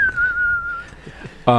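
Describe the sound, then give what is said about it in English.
A person whistles a single long, clear note that slowly glides downward, evoking a Western showdown tune, followed by a brief burst of a voice at the very end. “You know when it's like a shootout in the Wild West, it goes like doo-doo-doo, like a whistle.”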